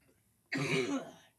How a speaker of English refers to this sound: I kind of chuckled internally. Internally. And it triggered a cough. Damn.